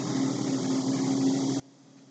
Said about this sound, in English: Okay, I was making sure that was the bugs and not just something, like, not that I was hearing static in these earphones.